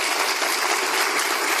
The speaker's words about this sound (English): The applause is telling. This was a live broadcast, not a true town hall in the sense that folks of any political persuasion could attend. Rather, CNN packed the audience intentionally with Trump's New Hampshire supporters